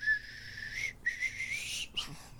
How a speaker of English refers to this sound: Is that to stop you whistling?